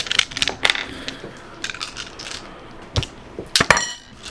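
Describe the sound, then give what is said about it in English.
Several dice are rolled together and rattle and tumble across a hard tabletop during a tabletop game, in a quick series of sharp clicks and clatters, ending in a louder burst of bouncing knocks before settling. No one speaks. “Alright, let's roll some dice.”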